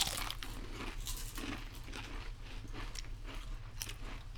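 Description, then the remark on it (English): Close-up crunching and chewing of a single crisp chip during a tasting, with repeated sharp, crackly bites in an irregular rhythm right at the microphone, over a low steady hum and no talking. “Just kind of crunch into the mic if you can.”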